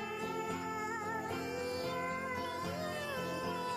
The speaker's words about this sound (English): brings on his fat brown boy cat. Pause for dramatic effect. Now he's got a real fat spaghetti cat. It's a fat cat. It's a good cat.